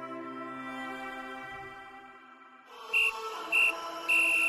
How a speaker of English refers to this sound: It is done. Brazil are the champions of the world. With that whistle, Brazil are crowned the 1962 World Cup champions for the second time in a row.